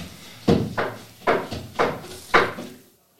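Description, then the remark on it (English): A window cleaner's brush scrubs against a window in five rough, swishing strokes, each a sharp burst that quickly fades, repeating at a steady rhythm before stopping. No one speaks. “Those background noises are the brush against Very sorry, the for anybody who's listening, we've got a window cleaner who is very thorough.”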